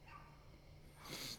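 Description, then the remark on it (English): A faint dog, the next-door neighbor's dog, gives a brief bark or yip near the end, muffled against a low background hum, with no one talking. “Apologies for the dog in the background.”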